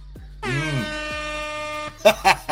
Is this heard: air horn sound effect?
yes